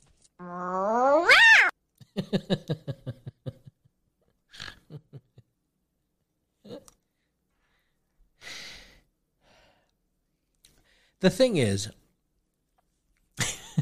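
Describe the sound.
A voice imitates an angry cat meow, opening with a drawn-out rising yowl, then rapid stuttering chatter, scattered huffs and hisses, and another harsh yowl near the end, fairly loud.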